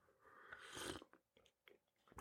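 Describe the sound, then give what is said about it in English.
A noisy slurping sip of Freedom Hill Coffee lasting about a second, followed by a few soft mouth clicks and a sharp breathy burst at the end; no one speaks. “having a little trouble with the pipes today, so let's just cut immediately to the sip of our preferred beverage.”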